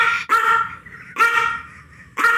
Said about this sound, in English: Okay. Wait. Is that Varishna barking?